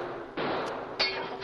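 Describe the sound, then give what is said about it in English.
Two sharp, loud bursts of gunfire from a mob at a railroad station, each followed by a bright, noisy crash of shattering window glass that lingers briefly. No one speaks. “That mob's coming this way, and if those rannies think they can throw lead around my railroad station and smash up windows, I'll salt them down with buckshot.”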